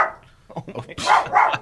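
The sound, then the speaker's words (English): A dog barks twice in quick succession, fairly loud, after a brief stretch of faint background voices. “Why are your children barking?”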